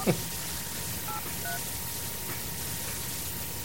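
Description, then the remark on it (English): A phone number is dialed with a few short touch-tone beeps to call an Ohio Wesleyan University football player, spaced out over a steady background hiss after a brief click at the start. “And his number, we're going to call that now.”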